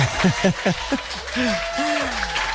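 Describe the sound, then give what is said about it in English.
A short burst of canned applause, dense clapping mixed with whoops and cheering voices from a crowd, moderately loud and lasting a couple of seconds. “Where's the applause?”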